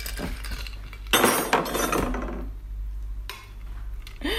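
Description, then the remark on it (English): Ice clinks and rattles inside a glass as a cocktail of nettle cordial and fino sherry is stirred until cold, with bright jingling bursts over a low steady hum, no voices. “And we're just gonna stir that down until it's just really nice and cold.”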